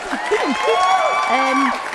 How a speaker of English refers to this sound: my reading goal for this year is 60 books and I have read 20 books. Clap, clap. Please clap for me.